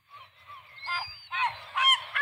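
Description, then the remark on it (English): Several seagulls call out in loud, harsh squawks, with a series of overlapping cries rising in intensity over a couple of seconds, without any talking. “So I now have an audio clip to play of seagulls.”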